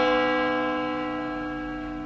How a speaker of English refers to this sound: Bell. A bell. Go and get a church bell. They're a bit big.